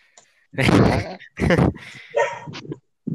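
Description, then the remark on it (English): Dogs bark loudly, four harsh bursts in quick, uneven succession, the first one long and drawn out, with no talking in between. “Okay, my dogs are going at it again.”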